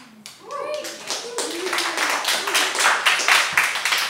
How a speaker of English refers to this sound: Wasn't planning on that getting an applause, but okay, I'll take it, thank you.